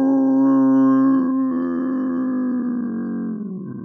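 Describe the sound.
A person voices a long, steady howl, a loud sustained tone held for several seconds and slowly fading, imitating a werewolf. Nobody speaks over it.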